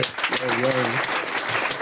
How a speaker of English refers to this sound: Give me a round of applause for my boy